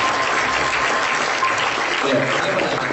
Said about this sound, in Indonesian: Tepuk tangan.